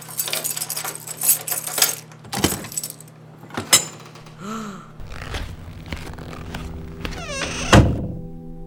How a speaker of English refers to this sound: Well, I have the keys in my pocket. Let's see if this works.